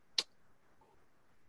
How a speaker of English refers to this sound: Sorry, I was clicking a link there.